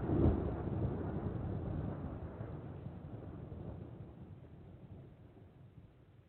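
A deep, rolling rumble of thunder swells up loudly at the start, then slowly fades into a long, low grumble that trails off.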